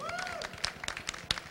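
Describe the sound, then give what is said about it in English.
Scattered audience applause for the second speaker of the day, thin and fairly quiet, with a few sharper claps standing out from a soft patter of hands. A brief gliding tone sounds at the very start. “So, please, a big round of applause for our second speaker of the day,”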